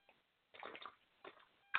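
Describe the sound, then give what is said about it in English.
Wet slurping and gulping of water from a protein-shake-style bottle in three short bursts, ending in a sharp sloshing splash as the water spills down the drinker's face; no one speaks. “I'm basically drinking my water out of a bottle. It's like a protein shake thing, so it just like spills it all down my face.”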